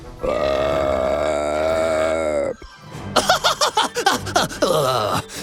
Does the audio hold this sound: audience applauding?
no